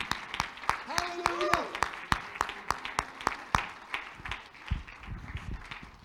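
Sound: audience clapping hands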